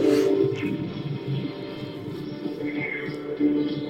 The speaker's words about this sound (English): I'm loading up the tape recorder.